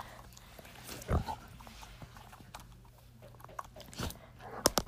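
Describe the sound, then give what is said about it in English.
A dog chews and bites on a phone, making irregular clicks and scraping crunches with a few louder snaps over a low background hum. “Hey, don't bite my phone.”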